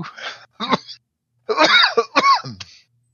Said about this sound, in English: Got a little bit too close to that sacred smoke there. Oh, yeah. Now, the coughing is how you know it works.